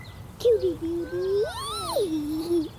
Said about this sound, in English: Look, girls, what's that in the tree? You see that bluebird there in the tree? It just flew down to a bush.